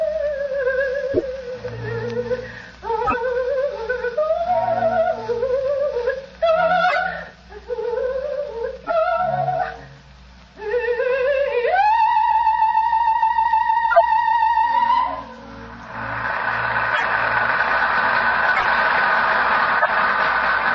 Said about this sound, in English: opera house to hear the famous Italian soprano Gina Valchesi singing Verdi's immortal La Traviata. I can hear that exquisite voice now, Mr. Bartell, as Holmes and I, seated in a box, listen spellbound to the great Valchesi singing her last act aria.